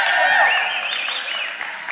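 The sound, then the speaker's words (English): Audience applause, a dense steady clatter of clapping that holds for two seconds with a few raised voices cheering through it, fading slightly toward the end. “In the 9:45, I got an applause because of that.”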